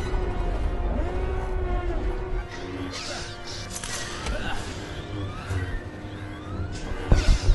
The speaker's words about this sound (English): You do get that classic Star Wars alarm sound, though. That's pretty cool. Whoever wrote that sound effect, it was you, John Williams. Well done. No, it's probably Ben Burtt, who is... he did the sound design.